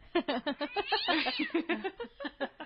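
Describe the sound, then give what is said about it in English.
An angry cat meows and yowls in a quick string of harsh cries, with a drawn-out wavering snarl in the middle, loud and alone with no talking. “I thought I was going to do Angry Cat on you. We can still do it.”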